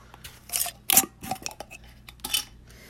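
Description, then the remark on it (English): A glass jar of cannabis being handled and opened to take weed out, with a few sharp clinks and scrapes of glass and lid in irregular bursts, and soft rustling between them. No one speaks. “Let's get some fucking weed out of the jar and let's get smoking, you know what I mean?”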